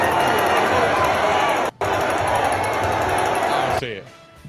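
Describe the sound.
A dense, loud stadium crowd roar, played as crowd noise, with a steady wash of many overlapping voices, briefly cutting out once partway through, then dropping away abruptly to a faint tail at the end.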